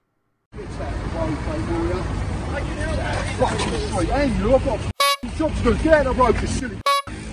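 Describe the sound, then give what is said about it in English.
Two short electronic censor bleeps cover swearing in a video, cutting sharply into a stretch of agitated shouting voices at a demonstration of protesters in orange hi-vis vests sitting in the road, over busy traffic noise, the second bleep arriving about two seconds after the first. “Now, there is very bad language. I'm going to attempt to beep it out, but apologies in advance.”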